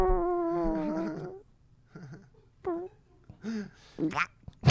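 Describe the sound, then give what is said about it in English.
A person imitates a wet fart with their voice: a drawn-out, wobbly buzzing tone, followed by several shorter sputtering vocal bursts. Close and fairly loud, with no other sounds around it. “I'll do the fart. You can do the talking.”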